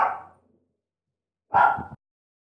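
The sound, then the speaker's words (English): Dogs being babysat bark twice, a sharp bark that fades quickly, then after a second of silence a second, fuller bark. Both are clear, with no talking. “I'm babysitting some dogs right now.”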